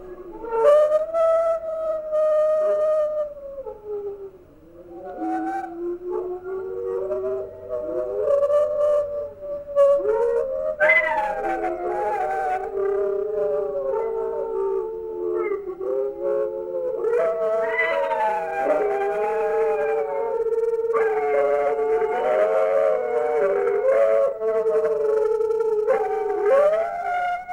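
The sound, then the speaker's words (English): A chorus of New Guinea singing dogs at the New Guinea Singing Dog Conservation Society howling together, several overlapping sliding, siren-like wails rising and falling continuously for close to half a minute, loud with no talking. “Now, let's hear the howling chorus of the New Guinea singing dogs, recorded by Janice Kohler-Matsnick at the New Guinea Singing Dog Conservation Society.”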